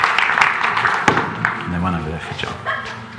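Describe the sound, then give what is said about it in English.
A church audience at Beacon Church applauds with dense, steady clapping, mixed with a few excited shouts and voices rising over the noise. “Big round of applause.”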